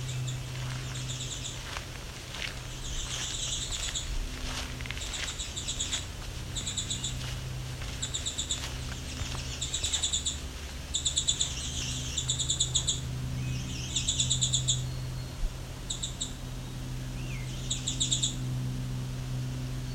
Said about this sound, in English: Swainson's thrush. I'm going to head back because I think that's where it's coming from. Must be two, it sounds like that. So that's three Swainson's thrush.